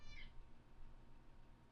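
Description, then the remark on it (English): A cat named Junior lets out one short, high-pitched meow right at the start, followed by quiet low background hum with no talking. “You're such a pain in my ass, cat.”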